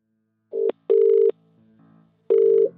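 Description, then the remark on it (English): An outgoing call's ringback tone: steady electronic buzzing bursts in a double pulse, a pause, then another burst, clear and fairly loud over a quiet line with no talking. “A few days later, I managed to get a phone number.”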